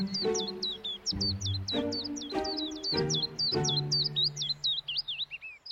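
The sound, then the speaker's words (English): A willow warbler's song in spring, a rapid run of high, sweet chirps that slides downward at the end, heard over a lower series of ringing, tone-like notes. “The flaw in this plan, of course, will arise if you happen to receive an urgent call while surrounded by a spring chorus of willow warblers.”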